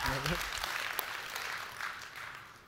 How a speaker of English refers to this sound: Okay, you can clap. All right, you can clap.